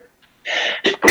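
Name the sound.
sneeze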